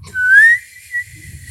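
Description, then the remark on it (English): A person whistles along to a song being played in a bus at night: a clear, sustained note that slides gently upward, then a brief second note follows, fairly loud over a low background rumble. “He was there. He was whistling.”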